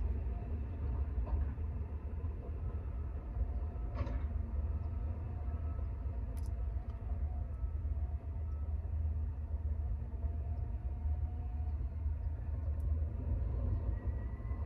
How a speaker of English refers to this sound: They've been driving these damn trucks.